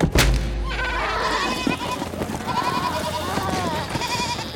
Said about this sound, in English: The spooked goats ran past Zagreus.